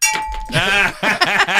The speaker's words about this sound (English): Teacher says every time a bell rings